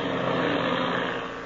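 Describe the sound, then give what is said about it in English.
A propeller airplane engine drones loud, laboring as the plane climbs at a steep angle in Captain Midnight, straining steadily in a thick, continuous roar for the whole moment, easing off just slightly at the end, with no voices. “The engine is laboring as the plane climbs at a steep angle.”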